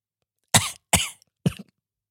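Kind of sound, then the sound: human body sound, small cough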